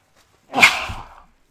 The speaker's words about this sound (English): Well, I can't stop sneezing.